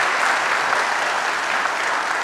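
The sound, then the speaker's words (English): A church audience claps steadily in warm, sustained applause welcoming new members, a dense wash of many hands with no pauses or voices standing out. “If you received them, would you say amen, happy clap, do whatever?”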